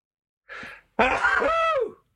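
A single loud sneeze: a short breathy inhale, a brief pause, then an explosive burst trailing into a voiced, drawn-out exhale that fades after about a second.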